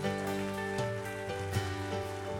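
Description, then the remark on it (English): A church audience at a Christmas Eve service on December 24th, 2015 applauds after a prayer in a steady, crackling patter of many hands, while sustained organ-like chords shift pitch underneath for a couple of seconds. “Give him a hand clap.”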